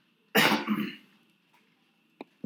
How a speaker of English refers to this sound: Excuse me. Yeah, we both coughing over here. What the hell going on?